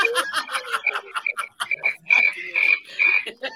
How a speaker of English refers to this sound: That doesn't sound like a healthy cricket.